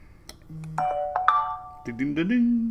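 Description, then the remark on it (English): A two-tone ding-dong chime rings out clearly, its bright notes sustaining and fading, followed by a voice speaking. “Ding dong.”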